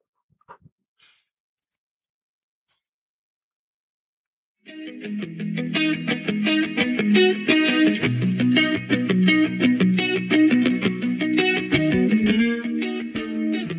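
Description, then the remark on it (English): During a church service, a few seconds of near silence with faint clicks, then a recorded song kicks in loudly, a full, dense mix with a steady beat and deep bass that plays continuously to the end. “I want you to just hear this song because we're going to tie this into the message.”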